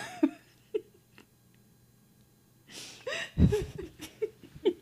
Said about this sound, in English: They don't know I have a cat. Why are you doing this? I told you I was recording.